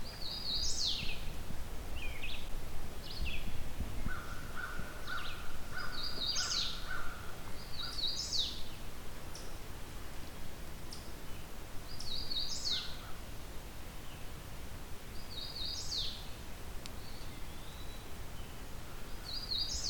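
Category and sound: bird, hooded warbler singing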